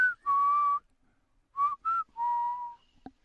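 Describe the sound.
A whistled spaghetti western film theme from The Good, the Bad and the Ugly: a short rising note, a long held tone, then quick notes and a sustained note, clear, with no talking.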